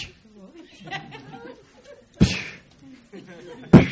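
Two sharp, loud punch impacts land about a second and a half apart, each a sudden full-bodied thump, following a stretch of low vocal murmuring and chuckling.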